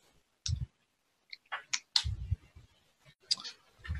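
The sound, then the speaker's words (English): Dice clatter and rattle across a hard tabletop in a few short bursts of sharp clicks and knocks, fairly loud, with no one speaking. “And I roll a dice.”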